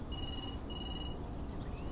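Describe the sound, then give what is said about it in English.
A telephone rings with two quick, shrill electronic trills in a row, heard over a steady low background hum, then the ringing stops. “Shall I get the phone?”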